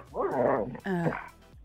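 A dog lets out two quick, high-pitched yipping barks, the first slightly longer and wavering, with a short pause between them and no talking.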